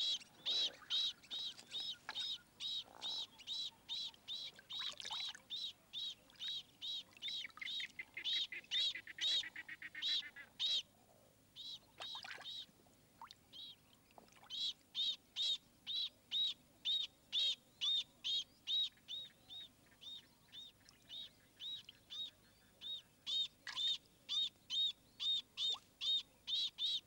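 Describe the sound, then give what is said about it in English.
A male jacana (lotus bird) calls insistently with a long series of sharp, high piping notes, repeated in quick rhythmic bursts, as it defends its nest from a water python. The calls are loud, with no voices. “When the lotus bird glimpses Boloko, the water python, he is ready to defend his nest.”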